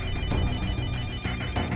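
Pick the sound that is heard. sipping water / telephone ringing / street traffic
telephone ringing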